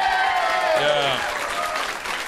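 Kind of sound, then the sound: crowd, audience applause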